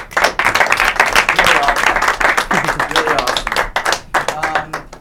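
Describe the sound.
An audience breaks into applause: dense, rapid clapping from many hands that holds steady and fairly loud for about five seconds, thinning slightly toward the end, with faint voices mixed in. It is applause for a presenter at the end of a talk, before a Q&A.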